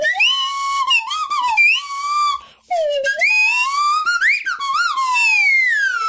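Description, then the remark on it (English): A slide whistle plays a short, swooping intro theme, its pitch gliding up and down in wavering phrases with one brief pause midway. No voices accompany it. “I see you have brought your slide whistle.”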